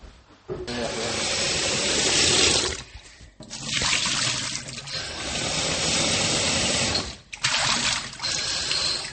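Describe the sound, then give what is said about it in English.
Loud water splashing and rushing in three long sustained bursts, each separated by a brief pause, with a hissing, spraying quality throughout, as Santa Claus comes in too fast and hits the Swilkie. “Splash, splash, splash. I hope you all don't need the toilet now.”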